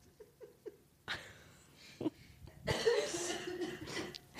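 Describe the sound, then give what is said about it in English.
A few harsh coughs burst out one after another, the last one longer and raspier, following a moment of soft vocal sounds. “I wish this cough would go away because I can't laugh without coughing.”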